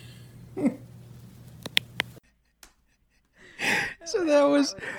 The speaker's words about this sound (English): So that was my our dog snoring in the night, adding to the sound, the cacophony of the wind. The wind, my pills, and the dog snoring.